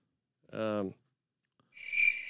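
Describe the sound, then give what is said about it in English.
A short burst of cricket chirping rises at the end, a bright, buzzy trill, moderately loud. Just before it comes a brief, low, voiced sound. “It's crickets.”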